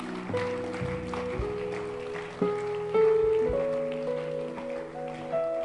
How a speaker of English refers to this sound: Clap for her as she comes.